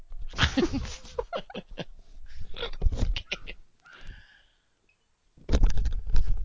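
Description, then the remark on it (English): A dog makes a run of close, irregular yelping and whining noises, pauses briefly with a few faint high whines, then bursts out loudly again at the end. “I gotta go get that damn dog.”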